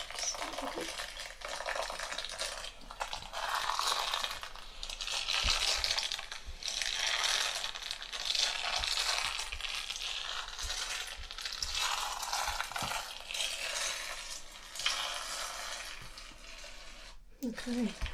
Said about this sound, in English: I just love that sound. It's just nothing quite like that crunching mud.